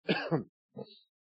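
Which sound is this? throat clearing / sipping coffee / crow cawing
throat clearing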